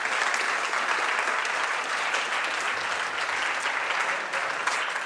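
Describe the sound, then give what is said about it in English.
A crowd claps steadily as audience volunteers come up to help the performer, a dense wash of many hands at an even, fairly loud level that holds for about five seconds without any voices breaking through. “Come on, give them a big round of applause as they come up.”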